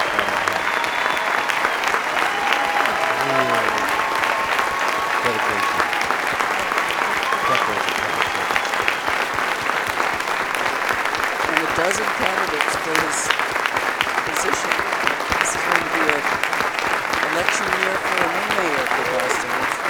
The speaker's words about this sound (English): Now, everyone on this stage. Mayor Menino applauding the audience.